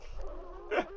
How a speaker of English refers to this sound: We have dogs barking in the background. That's not even the pod dog.